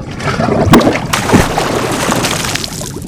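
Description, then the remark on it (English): Heavy water sloshing and churning, with a couple of deep splashy surges as a fountain altar and Malachi's body settle and sink beneath the surface, fairly loud, no voices. “You hear Malachi's voice boom throughout the realm as both the fountain altar and Malachi's body sink into the water.”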